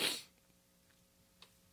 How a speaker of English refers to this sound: I know I'm out here fucking sniffing like fucking allergies are acting up right now.